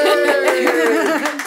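A short, loud burst of hand clapping from a small group, quick overlapping claps with a bright vocal whoop or cheer running underneath before it tapers off, celebrating a community radio station winning Community Radio Digital Station of the Year at the Community Radio Awards.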